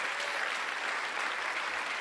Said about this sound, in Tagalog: Lakasan nyo yung palakpak nyo.